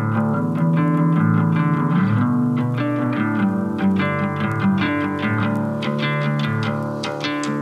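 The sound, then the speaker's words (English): A melody-driven rock instrumental intro by a rock band from Chicago plays with distorted, effects-laden guitars over a full band, loud and steady throughout with no vocals. “they're a melody-driven rock band from Chicago.”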